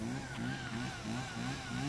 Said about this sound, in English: Okay, somebody's getting ready to cut something down. Chainsaw action going on there.